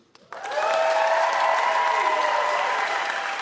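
A crowd in a room bursts into loud, steady applause from those who consider themselves Chicago Cubs fans. It starts abruptly and holds for several seconds, a dense clatter of clapping mixed with cheers and whoops.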